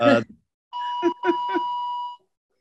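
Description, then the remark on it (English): A doorbell chimes for about a second and a half, a steady electronic tone with a few pulsing strikes, following a brief burst of speech at the start. “excuse me for the bell.”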